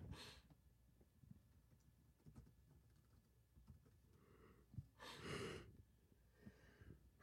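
A single sharp sneeze bursts out after a quick inhaling breath, standing out against a quiet background with faint clicks and rustles.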